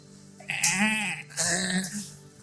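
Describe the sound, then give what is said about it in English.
Two drawn-out, quavering sheep bleats in quick succession, fairly loud, with a short pause between them and no talking. “They're sheep.”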